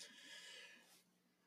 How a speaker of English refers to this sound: Okay, sorry. Sorry. Podcast yawn.